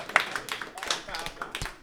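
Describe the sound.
Audience applause for an audience member whose name was drawn and who is called up: a crowd claps in a steady, dense patter of sharp hand claps, moderately loud, with some voices mixed in throughout the short burst.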